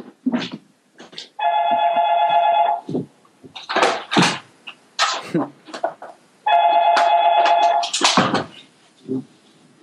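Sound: telephone ringing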